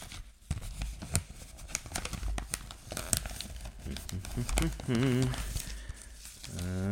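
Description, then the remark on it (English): Wrapping paper crinkles and rustles in a steady stream of crackling handling noise as a Christmas gift is being wrapped, with occasional tearing sounds and a brief voice murmuring near the end. “And now it's getting wrapped and I'm never going to see it until Christmas Day.”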